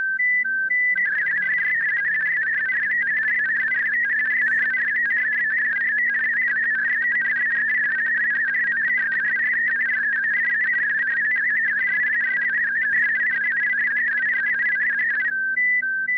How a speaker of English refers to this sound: There are several flavors, if I can call them that, of Olivia, depending on the bandwidth and the number of tones in use. Now here's a CQ using Olivia with 8 tones and a 500 Hz bandwidth, or just Olivia 8500.